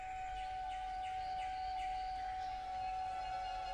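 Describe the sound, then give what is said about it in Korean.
A nightingale sings at night, a series of quick, repeated descending whistles and trills, fairly clear, over a steady sustained tone and a soft low rumble, with no voices, at the end of the third movement, Pines of the Janiculum, by Respighi. “3악장 쟈니콜로 언덕의 소나무의 끝부분에서 나이팅게일이 지저귀는데요. 밤에 지저귀는 나이팅게일 소리예요.”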